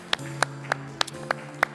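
Six sharp, evenly spaced claps in a steady rhythm, about three per second, fairly faint over a low constant hum, with no talking; a church audience clapping in praise and thanks to God.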